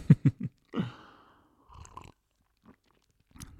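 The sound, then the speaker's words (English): Someone takes a sip of tea with a short slurp, preceded by a few quick clicks of the cup and followed by faint swallowing and breathing sounds. No one speaks. “First, sip of tea, of course.”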